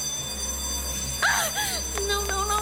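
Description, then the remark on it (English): A school late bell rings before exams in a steady, high electronic tone with a few quick repeated pulses, following a brief burst of warbling, sweeping sounds over a low hum. “Late bell's about to ring, now.”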